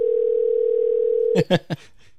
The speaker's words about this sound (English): We shall see if he picks up. Oh, it's ringing. Are you going to dox him when it goes to voicemail?